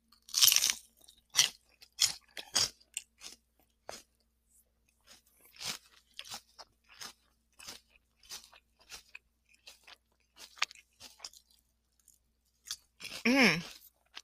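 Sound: chewing crunchy food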